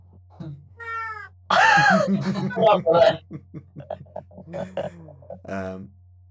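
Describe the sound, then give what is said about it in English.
A voice imitates the pained yowl of a cat being stepped on while entering a room: a short rising mew, then a loud, drawn-out screeching wail, followed by several softer, broken cat-like cries. “A cat noise. You're like a cat. Yes, you step on a cat as you enter the room.”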